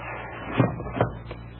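A small wooden sliding door in the pedestal of Ajab Jr., a chess-playing automaton, rolls open with a soft rumble, punctuated by two firm clunks and a lighter knock at the end, over a steady low background hum.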